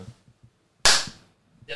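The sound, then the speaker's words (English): One sharp, loud hand clap made into a microphone cracks out with a brief ringing tail, preceded by faint low murmuring and followed by a softer burst of noise at the very end. “I'll do the clap thing too.”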